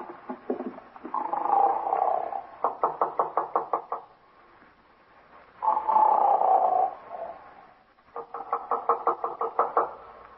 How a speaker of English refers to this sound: Guy snoring up a storm at 9.